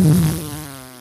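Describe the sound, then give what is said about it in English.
A voice blows a single buzzy, sustained raspberry imitating a fart, fairly loud at first, then trailing off over about a second with no talking. “Tom Cruise didn't fart when he rode a motorcycle off a cliff and then parachuted.”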